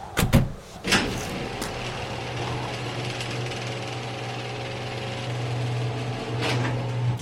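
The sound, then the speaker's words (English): A few sharp mechanical clunks, then a steady motorized hum and rattling drone that runs for several seconds as the automatic door of an attached garage grinds shut after its button is pressed. No one speaks. “Exiting the vehicle, I headed for the door that led to my kitchen, pausing to hit the button that would close the garage door and pulled my boots off.”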